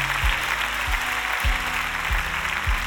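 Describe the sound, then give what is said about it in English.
A church audience claps during the offering in a steady, dense wash of applause, with a low tone sliding downward every half second or so beneath it. No one speaks. “I don't know why you're not clapping, because we can use that to help people.”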